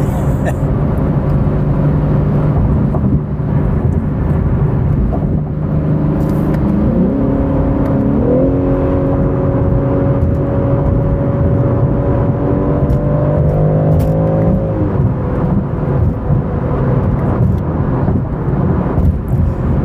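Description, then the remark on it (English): A loud sports car engine roars steadily as the car takes a corner at speed, its pitch climbing sharply as it revs up, holding a high, strained whine for several seconds, then easing back down to a lower drone. “I'm taking a lot more speed into that corner than I would normally in most cars.”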